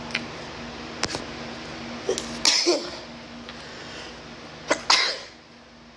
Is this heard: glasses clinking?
no